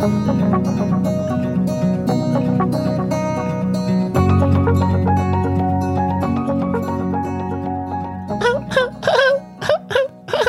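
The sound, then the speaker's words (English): After several seconds of layered, sustained tones, a person gives five or six short, squeaky vocal bursts in quick succession, mimicking the high-pitched call of a small bird about 3 inches long, fairly loud. “I don't know that our vocal cords are capable of mimicking something that's very high pitched, 3 inches long.”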